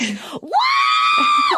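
A loud, sustained high-pitched human screech rises sharply and holds steady for over a second before dropping off, preceded by a brief vocal sound and delivered up close with a joyful, unrestrained quality.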